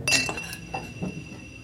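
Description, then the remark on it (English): Glasses clink together in a toast, a few quick bright taps, leaving a thin ringing tone that lingers and fades. “raises his glass, and the others follow suit.”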